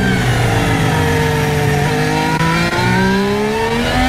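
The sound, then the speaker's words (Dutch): A loud, continuous Formula 1 car engine heard onboard Oscar Piastri's car during a race, its harmonics sweeping steadily upward as it accelerates through the gears, with a brief dip around a shift and no voices. “Onboord geluid van ons Capiastri.”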